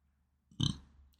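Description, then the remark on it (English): A single short, throaty burp erupts, loud at first and then trailing off over about half a second, with no talking around it. “Oh, that caught my burp.”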